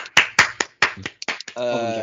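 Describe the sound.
A few sharp, loud hand claps in an uneven rhythm, a brief smattering of applause, with a voice speaking between the claps and continuing afterward.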